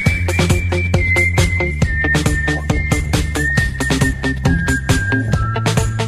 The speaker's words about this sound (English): Thanks for playing that crazy whistling song. It bothers me all the time.